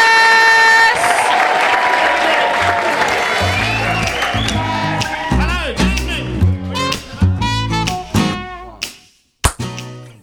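A loud, dense burst of audience applause and cheering in Edinburgh, welcoming a performing act, fills the first few seconds, then thins into scattered claps, whoops and shouts that fade out near the end.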